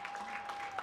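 An audience claps in a dense, steady patter of many hands with no break, at a moderate level, while a thin, steady tone hums faintly underneath.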